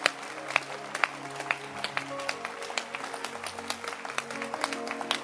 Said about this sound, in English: Can you clap your hands? Or you are too big to clap your hands?